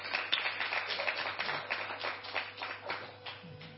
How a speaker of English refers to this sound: Amen. Let's clap now.